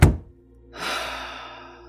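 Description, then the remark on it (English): A man closes a door behind him with a single dull, low thunk, followed after a brief pause by a softer, sustained rustling hiss that fades slowly. “Closes the door behind him.”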